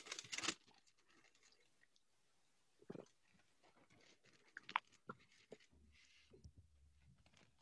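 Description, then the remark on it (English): A sharp burst of crinkling paper as a man takes his paper out, followed by scattered, softer rustles and crisp handling noises as sheets are shuffled, with no talking. “Get his handy dandy paper out.”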